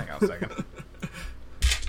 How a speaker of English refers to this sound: Hang on a second. Whoa, jeez. That's. No. Those aren't even dice, those are just jacks. I felt that in my bowels, oh my god.